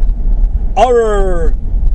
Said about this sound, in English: As you probably figured out, I'm driving in my car.